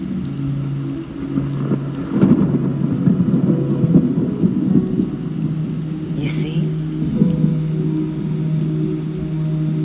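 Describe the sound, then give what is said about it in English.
Steady rain hisses throughout while deep thunder rolls and rumbles in low, swelling waves; a voice briefly speaks over the storm. “Don't focus on the storm.”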